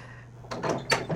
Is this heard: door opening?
yes